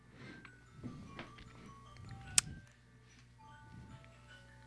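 A faint ice cream truck jingle plays, its thin melodic tones drifting over a low background hum, with soft ticking and one sharp click partway through.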